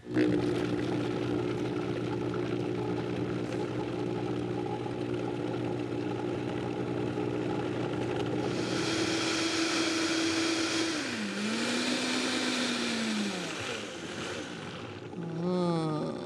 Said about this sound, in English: But the Vitamix is a really nice way to go. I hope I don't have too much in here to bog it down. If we do, I might add just a little bit of water to thin it out a little bit so it can blend. But let's see.